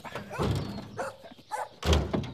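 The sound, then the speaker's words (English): A farm dog barks in a short, uneven series of about four loud, sharp woofs, with the last bark the heaviest and no talking over it. “Lovely dog. Is he actually a good farm dog?”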